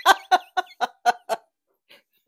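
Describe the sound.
A voice imitates a turkey gobbling, six quick, throaty bursts in a rapid even rhythm, fairly loud, then a brief pause and one faint trailing note.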